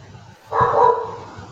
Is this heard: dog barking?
yes